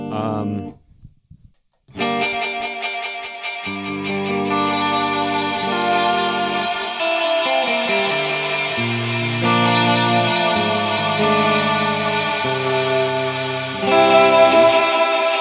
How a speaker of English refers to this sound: it's got a phaser in it, and there's also a flanger, I think.